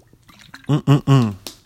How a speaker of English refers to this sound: right now, let me take a sip of my Red Robin water bottle.